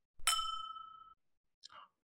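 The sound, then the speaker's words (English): A drinking glass, the fifth glass in a bourbon tasting, clinks once with a bright, ringing tone that fades over about a second, followed by a short, soft scrape as the glass is lifted to be sniffed. “as I pick up glass number 5 and begin to sniff it.”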